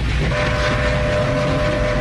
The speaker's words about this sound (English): Why is it a train? Why is it a train? Put that together. Is it a train? That's the question. Why is it a train? I love that sound.